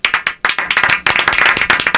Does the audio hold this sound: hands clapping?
yes